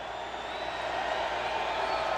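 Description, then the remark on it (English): A roaring crowd at a big New Hampshire rally for President Trump's 2020 re-election campaign as he walks up to the mic. A dense, steady wash of many voices and cheers holds at a constant loud level for about two seconds, with no single voice standing out. “You can hear the roaring crowd there as he's already kind of kicked it off, but this is a big rally in New Hampshire for his 2020 re-election campaign, otherwise known as Keep America Great.”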